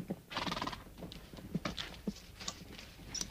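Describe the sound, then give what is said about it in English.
A horse lets out a bright, shrill whinny, followed by a few slow, uneven clip-clops of hooves on hard ground, as its rider arrives at an old barn in daylight. No one speaks. “I tied the horse in some shade and made my way to the door of the barn.”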